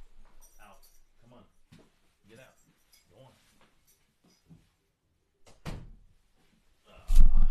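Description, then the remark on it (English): Dogs roughhousing and sparring in an office in the morning: muffled scuffling and soft growly noises, then a sudden loud thump and a burst of clattering, jingling commotion near the end. “Sorry, dogs are trying to spar this morning, and we've already had one sick dog this morning.”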